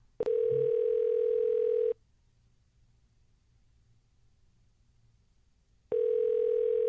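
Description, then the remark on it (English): A telephone dial tone hums in steady electronic bursts as a phone call connects: one tone of about two seconds, a long silent gap, then the tone starts again. Clear, with no voices. “Let's do one more phone call, and we'll take one more phone call.”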